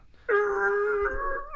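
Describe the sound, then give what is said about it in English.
A person's voice imitates screeching car tires as a dad joke: one loud, sustained, high-pitched squeal lasting over a second, holding a steady tone before sagging slightly at the end, with no talking. “And then, of course, the ultimate dad joke whenever we're driving, especially when we were in India, the screeching tire sounds.”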